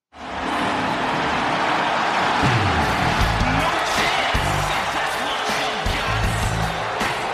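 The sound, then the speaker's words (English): A large WWE SmackDown crowd boos loudly and steadily as Vince McMahon makes his advertised appearance, a dense roaring wash of voices that starts abruptly and holds without a break for about seven seconds, with low droning tones underneath. “You can hear people booing.”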